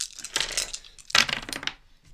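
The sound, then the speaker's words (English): A clatter of dice tumbling and bouncing across a tabletop in two quick bursts, bright, fading out after a couple of seconds with no voices; the roll comes up a three. “Can you grab the other dice, please? It's a three.”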